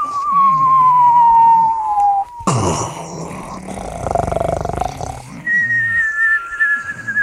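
Whistles are dropped: a long, slowly falling whistle ends in a sudden loud crash and rumbling clatter, after which another high whistling tone begins.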